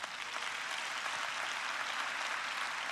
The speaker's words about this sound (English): Clap if that's true.